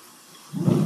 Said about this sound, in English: And I'll put the champagne in here. And pour your champagne slow or the bubbles will erupt on you.